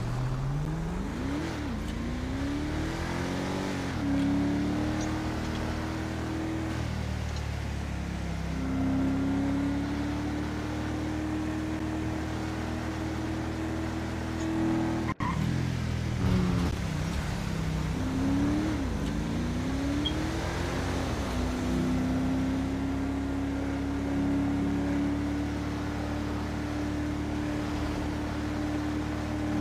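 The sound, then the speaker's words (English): A video game car engine, an in-game State Department vehicle, drones steadily, its pitch rising in smooth sweeps as it accelerates and shifts, then holding a sustained whine, twice over, with no talking. “I'm gonna grab my State Department vehicle.”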